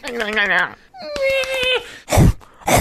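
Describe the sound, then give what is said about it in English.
A cat coughing up a fur ball: a few strained, whiny yowls rising and falling in pitch, followed by a short burst of harsh, raspy hacking. “Oh, he's coughing up a fur ball.”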